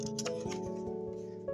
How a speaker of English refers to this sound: I'm turning the pages, okay?